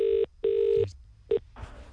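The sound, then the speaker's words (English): An outgoing call to a restaurant to make a booking: the ringback tone purrs through a phone line in clear, loud electronic bursts. Two longer rings, then a clipped third, are followed by a crackle as the line picks up. “So we're gonna phone a restaurant and try and make a booking for Laurel.”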